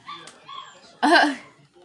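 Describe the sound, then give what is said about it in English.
Puppies crying in a cage: a few faint, high whimpers followed by one louder, drawn-out whining yelp, with no talking over them. “The puppies are just crying.”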